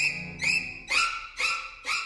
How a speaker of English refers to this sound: stabbing violins that make that scene so iconic.